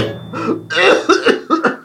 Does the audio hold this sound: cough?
yes